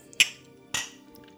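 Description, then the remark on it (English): Two bright, sharp clinks of glasses touching in a toast, about half a second apart, fairly loud, with a short ringing tail after each and no talking. “Everybody drink. Gosh. Cheers.”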